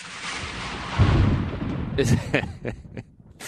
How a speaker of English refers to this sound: Is that thunder and lightning? Is that upset nature there? I'm not sure what exactly is going on. It's the heavens parting every time he steps up to the plate.